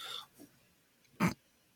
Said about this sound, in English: Now they're going. Yeah, as I say. They heard you talking about them. Mm-hmm. I hate to say this, but they're sniffing my shoes.